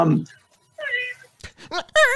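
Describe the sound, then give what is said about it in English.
A man on national television, unable to formulate an answer, makes a string of high, squeaky whimpers: a breathy burst, then a wavering drawn-out squeak and several short tonal cries rising and falling in pitch, with no words. “Yeah, it's a squeak and a whimper.”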